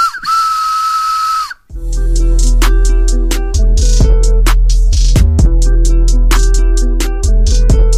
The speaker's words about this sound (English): Cue whistle noise.